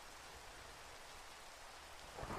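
Steady, dense rain hisses evenly throughout at a moderate, constant level, with a short low rumbling burst of thunder right at the end. No voices.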